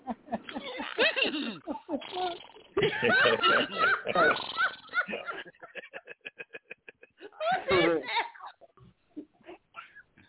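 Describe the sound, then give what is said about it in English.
A person mimics a horse with a loud, fluttering whinny that breaks into rapid pulsing neighs, mixed with bursts of laughter and other voices. “Who did the horse?”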